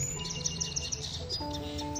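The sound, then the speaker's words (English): Pigeons call softly, low sustained tones mixed with a quick run of repeated high chirps, with no voices over the birdsong. “My beautiful pigeons.”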